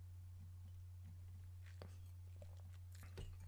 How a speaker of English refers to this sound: I guess take a little sip of this.